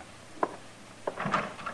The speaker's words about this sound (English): I'll open the door for her.